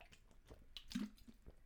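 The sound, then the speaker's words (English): Quiet sipping and small wet swallowing sounds of someone drinking water, a few brief slurps and gulps over under two seconds, with no talking. “I need water. Give me a second, guys.”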